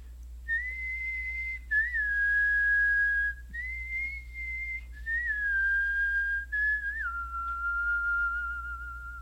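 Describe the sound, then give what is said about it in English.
A person whistles a bird-like tune, a run of clear, high sustained notes that slide and step gradually downward in pitch, with short gaps between phrases over a low steady hum. “It sounded like a bird singing.”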